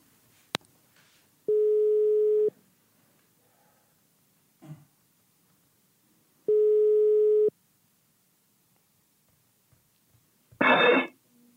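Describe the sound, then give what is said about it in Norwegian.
Ringback tone of an outgoing phone call: two steady one-second beeps about five seconds apart, clear and moderately loud, with a click before and a brief rustle as the line is answered. “Vi klar til å ringe han? Vi klar. Vi må være stille. Og du bare ringer og prater inn i mikrofonen.”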